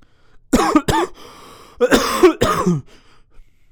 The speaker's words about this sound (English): I'm choking on my own vomit. I really hate when you choke on your own saliva because you're breathing incorrectly.